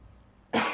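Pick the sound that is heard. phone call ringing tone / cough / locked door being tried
cough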